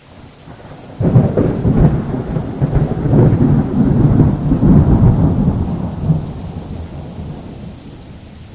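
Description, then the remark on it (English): A loud rumble of thunder breaks in and rolls on for several seconds over steady rainfall, then slowly fades, leaving the rain hissing in the background. “By the way, the storm has not really subsided.”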